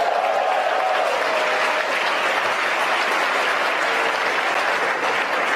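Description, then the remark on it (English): Mission Control team clapping and cheering after main engine cutoff and stage separation during a Falcon rocket launch, steady sustained applause filling the whole clip, with a faint voice or tone briefly audible underneath early on. “You can hear the applause from Mission Control.”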